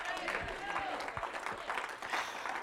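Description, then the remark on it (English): An audience claps during preaching at a church service in a steady, dense patter of many hands, with indistinct voices and a few raised tones mixed into the applause throughout. “He don't even have the Holy Ghost yet, but he stood up and clapped and worshiped while I was preaching.”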